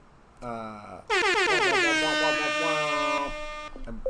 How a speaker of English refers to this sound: I'm going to give a quick quick warm, warm air horn welcome.